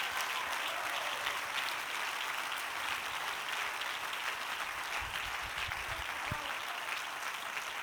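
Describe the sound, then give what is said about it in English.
An audience claps their hands during a sermon in a steady, dense wash of applause that holds evenly for several seconds, with no voices standing out above the clapping. “Clap your hands and shout to him just a moment.”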